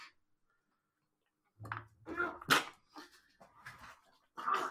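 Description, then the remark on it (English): After a brief silence, a person gags and coughs after swallowing a drink of bean juice and milk, in a run of harsh, irregular, spluttering bursts, fairly loud, with no words spoken. “Oh, I actually swallowed it, it came straight back up.”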